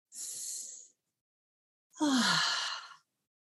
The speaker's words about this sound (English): So let's everybody take a breath.